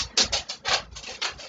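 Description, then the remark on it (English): A dog digging and scratching around in a small studio room: a quick series of dry, rasping scrapes in an uneven rhythm, moderately quiet, with no voices. “So, sorry if you hear him digging around.”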